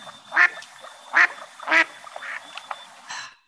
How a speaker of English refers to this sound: Sounds like a duck. To me. It sounds like a duck and it looks like a duck and it swims like a duck. It's probably a duck. And it is a duck.